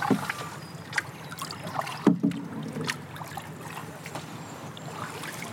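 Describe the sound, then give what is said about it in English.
Oars dip and splash in a steady rhythm as a small boat is rowed along calm water on a canal, with soft drips and light knocks of the oars against the hull. “Keep rowing”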